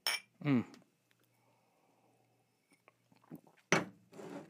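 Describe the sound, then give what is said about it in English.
A short, bright clink of glasses touching in a toast, followed by quiet sipping and soft mouth noises, with a brief murmured voice sound near the start. “But cheers. Cheers. To the Commonwealth.”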